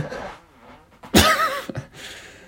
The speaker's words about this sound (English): I thought that was going to be a much less gross sounding fart. I thought it was going to be much. I think I shit myself. You definitely shit yourself on that one.